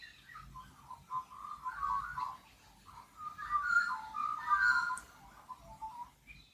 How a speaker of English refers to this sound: I just love those birds. I don't know where that came through on the recording, but they came through with a beautiful answer.